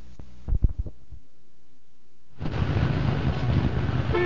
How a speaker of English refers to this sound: Well, here we are again, 7:30 in the morning and sitting in another traffic jam.